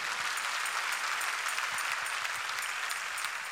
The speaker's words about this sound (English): Anybody with your mind made up to seek God, clap your hands in the name of the Lord.